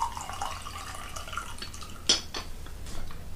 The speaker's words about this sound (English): I think I'll just pour some more tea for this one and see what I think.